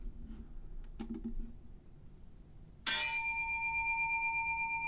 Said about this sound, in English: That is called Service Bell. I play that as like a way to keep tally on how many times